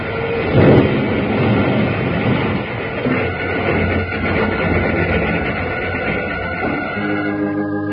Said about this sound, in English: You will crash through the ice and go to the bottom of the river. It's too late. We're going to crash.